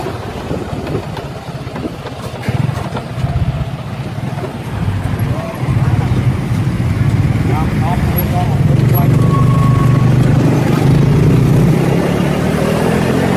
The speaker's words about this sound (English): Here's an example of public transportation called Songtao, or in this short video of us riding in a tuk-tuk, you will see how it is normal to cut off traffic when coming to an intersection.